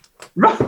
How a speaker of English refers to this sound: Well, our dogs are disagreeing.